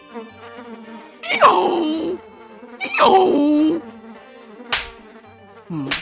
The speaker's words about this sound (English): Sorry, I had to scare away some flies that were buzzing around my butt.